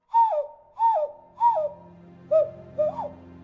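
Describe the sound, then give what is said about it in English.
A person whistles five low notes imitating a bird call, each a short rising-then-falling call, evenly spaced with brief pauses. The whistling is clear and moderately loud, with no talking. “Then I resumed my search, employing a low bird whistle to draw out an alone and scared child, hopefully.”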